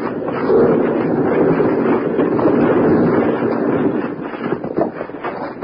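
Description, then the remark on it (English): A loud, continuous rumbling roar of a radio-drama landslide in Boulder Canyon, with huge rocks crashing and tumbling; the din holds steady, then breaks into separate sharp thuds and impacts near the end. No voices. “Wild Bill, Jingles, and Grandpa Granger, deep in the bottom of Boulder Canyon, suddenly look up to see a landslide crashing down on them. As they start to run, huge rocks smash all around them.”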